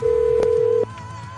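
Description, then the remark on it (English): A phone tone sounds steadily for under a second, loud, then cuts off, leaving a faint low background hum, while a phone number is being dialed. No one speaks. “Just trying to dial a fucking... phone number.”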